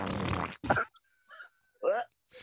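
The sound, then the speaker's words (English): A voice imitates a wet, sputtering fart in a series of short, loud bursts with brief gaps, some noisy and spluttering, others more voiced and gurgling, with no speech. “No, it's bad because like you fart and it sounds normal, and then all of a sudden the very end sounds like a duck drinking water, and you're like, oh shit.”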